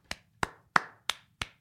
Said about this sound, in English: I hope, Baby Nation, I hope you're clapping along. I feel like I can hear it.